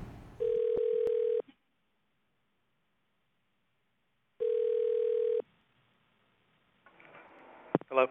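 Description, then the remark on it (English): Two steady, mid-pitched telephone ring tones as a call is transferred to a guest, each about a second long and separated by a few seconds of silence, followed by a burst of faint line noise and clicks. “You are being transferred to a guest.”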